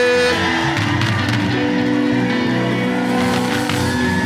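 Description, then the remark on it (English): A church audience cheers and shouts together in a loud, sustained wash of many voices, with whoops rising above a steady, dense roar for several seconds. “I've got my hallelujah crowd here, but let me just see if I've got a hallelujah crowd on this side.”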